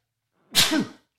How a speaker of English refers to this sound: Excuse me. Oh, goodness. So you got to love the sneeze button. But everybody hears that silence.